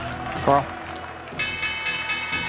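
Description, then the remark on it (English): A stock exchange opening bell rings at the start of the final trading session of the month in a bright, steady, continuous ring that begins partway through and holds to the end, following a brief vocal sound and low background murmur. “Guys, there's the opening bell and the S&P at the bottom of your screen as we get into this final session of the month.”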